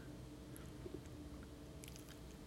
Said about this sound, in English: He kneels down to speak to his dog. Right, Washington? The dog licks Putin's hand.